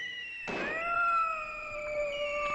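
A sudden rough burst gives way to several drawn-out, wavering yowls from many cats, dozens or maybe hundreds, overlapping one another, loud, holding steady tones that slowly bend in pitch.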